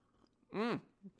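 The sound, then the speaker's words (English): A single short slurping sip of tea, a rising-then-falling tonal whoosh lasting about a quarter second, followed by a faint soft swallow. No one speaks. “We're going to dive into that, but before we do, a little sip of the tea.”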